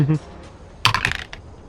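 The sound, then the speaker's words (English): A short clatter of dice tumbling in a dice box, rolled to hit, a quick cluster of sharp clicks lasting under half a second, just after a brief bit of voice. “I'm disappointed in this dice box you got me here.”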